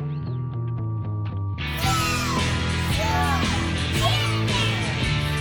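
A brief tonal musical intro gives way to a busy wash of children's shrieks and yells layered over steady music, continuing in an excited jumble until the end.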